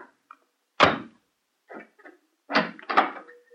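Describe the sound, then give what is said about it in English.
A door is shut and bolted: a heavy thunk, a pause with a faint scrape, then two sharp metallic clacks of the bolt sliding home, fairly loud. “Excuse me if I bolt the door again.”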